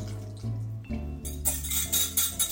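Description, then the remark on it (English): A thick, freshly re-whisked liquid marinade is poured over cut tempeh in a baking dish, a wet splashing and trickling that starts after a moment of quiet and continues in uneven gushes. “Now we're going to bake it, but first I'm just going to re-whisk the marinade so that it's all combined and then just pour it over the tempeh.”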